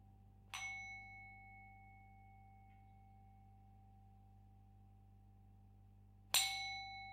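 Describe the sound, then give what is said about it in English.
A meditation bell is struck twice, about six seconds apart, at the end of a meditation session. Each strike opens with a bright clang and settles into a long, pure ringing tone that lingers over a faint steady hum. “So I will ring the bell 3 times, then you can come out of the meditation.”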